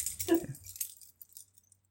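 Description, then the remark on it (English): A short metallic jingle of keys on a ring, a bright rattle near the start followed by a few lighter clinks fading out, fairly quiet with no talking. “Got keys. That's good. I got keys.”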